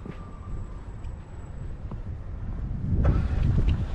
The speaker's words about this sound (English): Yeah, there's a plow on the other side of the street over there, and there's a plow right beside me too.